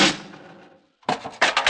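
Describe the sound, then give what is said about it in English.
In a furnace room, a man slams a heavy metal furnace door shut with a loud bang that rings and fades out and throws down a shovel; a burst of sharp clattering knocks follows after a brief silence. “He slammed the furnace door and threw down the shovel.”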